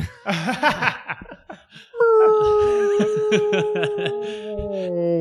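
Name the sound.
voice imitating whale song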